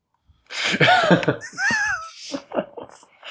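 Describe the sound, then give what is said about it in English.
A sudden sneeze bursts out with a sharp breathy onset, followed by a few short gasping, sniffling breaths and small vocal noises. “Sorry, I had to sneeze.”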